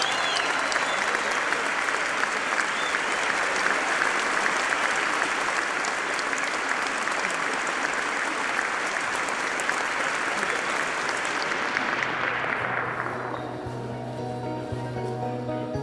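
Sustained audience applause, a dense steady wash of clapping for about thirteen seconds, then fading out as a soft musical tone enters underneath.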